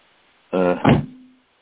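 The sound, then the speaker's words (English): A single loud door slam, preceded by a brief creaking swing and followed by a short ringing decay that fades within about half a second. “Slam the damn door.”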